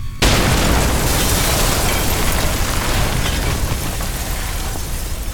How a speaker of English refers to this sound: So there is a massive explosion that can be heard from outside as something in the power plant goes.